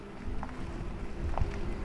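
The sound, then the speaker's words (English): A steady, low pedestrian warning hum from a Cadillac electric vehicle driving down the block drones on without a break, soft and even in level, with a couple of faint brief tonal blips rising above it. “we put that sound in so that pedestrians and others can hear that the vehicle is approaching”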